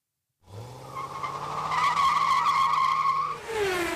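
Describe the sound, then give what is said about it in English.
A race car roars and speeds past with a long, loud tire squeal, the engine whine sustained for a few seconds before shifting pitch as it pulls away. “Either that was a real quick show or that was race car driver of car number 66, Jeff Sharkey, right here of Oswego, New York.”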